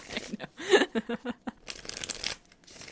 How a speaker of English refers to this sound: Let me shuffle this again, getting rid of card of the day vibes. Be careful while you're shuffling. It's a dangerous shuffling world out there today.